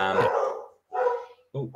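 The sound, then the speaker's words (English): A dog barks three times in quick succession, fairly loud, each bark a short harmonic burst with brief gaps between them. “Sorry, that would be my dog's.”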